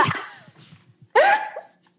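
A short, throaty burp erupts loudly just after a sip of water, preceded by a softer rough gulping noise and a few faint low rumbles; no one speaks.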